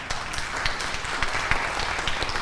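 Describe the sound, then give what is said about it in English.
An audience breaks into a round of applause for a new stage, a dense, steady patter of many hands clapping at an even, moderate level for the full stretch, with no voices over it. “But take a look at it, and you can give a round of applause if you'd like to, because it's really quite beautiful.”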